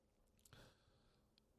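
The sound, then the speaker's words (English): A short, throaty burp erupts after a brief pause, low and gurgly, followed by quiet and then a sudden loud burst of noise at the very end. “Can't stop burping.”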